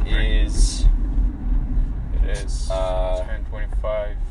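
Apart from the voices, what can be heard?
car interior noise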